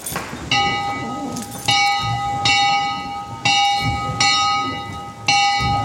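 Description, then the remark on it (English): A church's original bell, brought down from Alabama and still functioning, rings loud, struck about six times at a steady swinging rhythm, each clang leaving a long, shimmering hum that overlaps the next strike. “This is the original bell.”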